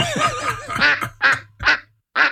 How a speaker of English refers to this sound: Oh my God. And on that quack, we'll call it a show, friends,